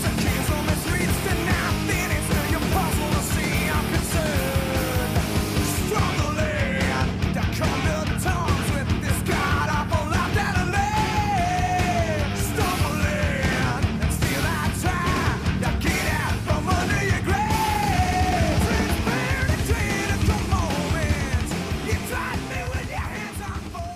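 A thrash metal song plays at full, steady loudness, with dense distorted guitars and pounding drums under shouted, wavering vocals that rise and fall throughout.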